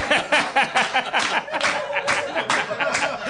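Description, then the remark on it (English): An audience claps in a steady, uneven patter of many hands, fairly loud throughout, with some scattered laughter and crowd murmur mixed in. “They're clapping, but they're not chanting.”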